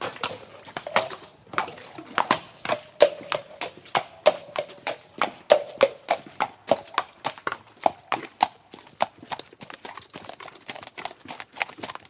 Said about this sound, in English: You know, we've done a bit of a trot and a bit of a canter, you know. They worked yesterday, so we're just giving them light exercise today.